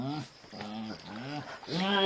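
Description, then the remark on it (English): A voice imitates a hippo's roar with a few drawn-out, strained bellowing bursts that rise and fall, loud, building to a stronger final roar. “He stretched it and he roared until his voice echoed across the lake.”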